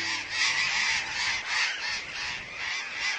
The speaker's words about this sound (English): A flock of hundreds of parakeets swirls into a deep ravine in Argentina. The ravine sides are riddled with thousands of small holes, the nest holes of an enormous colony of burrowing parakeets.